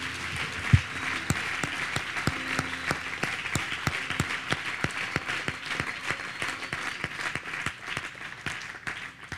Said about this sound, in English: Somebody receive that right now with a hand clap of praise to the Lord.